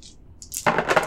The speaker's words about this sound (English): All right, here we go. Roll these five dice. All of them, okay.